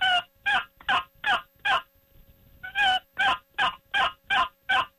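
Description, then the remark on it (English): A turkey yelp played on a box call, a friction call worked by rubbing: five sharp, evenly spaced raspy notes, a short pause, then seven more in steady rhythm, loud with no talking. “You know, a simple call you make is called a yelp.”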